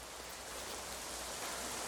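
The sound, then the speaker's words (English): Heavy rain from rain machines during the filming of a scene pours down in a dense, unbroken hiss, steady from start to finish with no pauses and no voices. “These kind of scenes are the hardest for the sound man because they have radio mics, but the sound of the rain machines is much heavier than real rain.”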